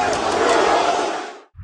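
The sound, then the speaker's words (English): A large wrestling crowd boos loudly, a dense, sustained roar of many voices that holds steady for about a second and a half before dropping away abruptly. “Boo, boo, that the crowd. Boo, boo, boo. Because them mad, because them love Bret Hart.”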